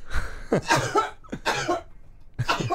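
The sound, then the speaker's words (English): A quick run of about four loud, explosive sneezes, each a sharp breathy burst with short gaps between them and no talking. “No, I have to sneeze.”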